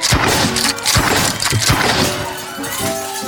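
Drinking glasses smash loudly one after another, several sharp crashes in quick succession, followed by a bright tinkling of scattered shards as the breaking trails off.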